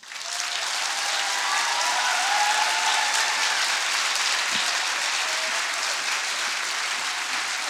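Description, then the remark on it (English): Sustained applause from a sizable audience after a speech fills the room, a dense, steady patter of many hands clapping at once, loud and continuous throughout with no voices standing out. “I just came up to get some of the clapping from her.”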